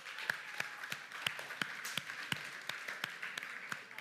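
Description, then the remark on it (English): Audience applause at Tribe Night, a crowd clapping steadily for first-time attendees, with a few sharp claps standing out at a fairly even pace over a dense wash of hands, without speech. “Let's clap for them.”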